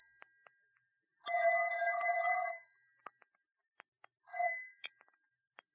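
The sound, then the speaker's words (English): A telephone bell rings in a long, steady ringing burst, then after a pause gives a brief second ring, with faint clicks and taps between. No one speaks. “Don't answer that phone, Mike.”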